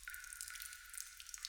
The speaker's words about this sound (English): only because the blockage seems to be what's allowing water to trickle through and where a lot of the fresh water is coming from. You do notice that this is not fresh water still.